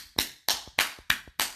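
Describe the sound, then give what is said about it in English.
Five light hand claps in a steady, even rhythm, each a crisp sharp slap that fades quickly, with no voices in between. “Man, that wasn't even a clap.”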